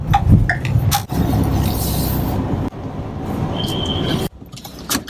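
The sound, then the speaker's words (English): A steady low rumble of a car's engine and road noise as the vehicle slows down and pulls over to stop, broken by a few abrupt cuts and light clinks, with no one talking. “I'm going to stop by, I'm going to pull out my car, and I'm going to talk to you in a second.”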